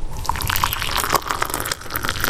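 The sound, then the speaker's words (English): Warm water pours steadily into a cup or mug to make a drink with cayenne pepper, a continuous splashing trickle with brief bubbly gurgles, without any voices. “Now, what do I need? Warm water, cayenne pepper, that's it?”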